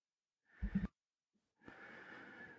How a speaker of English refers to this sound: Once more, breathing in and holding the breath for a moment, pausing, and then exhaling.